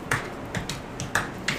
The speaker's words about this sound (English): Just walking around, clapping my hands, making a wall.